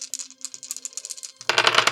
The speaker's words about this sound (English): I'm going to roll 3 dice with a kick.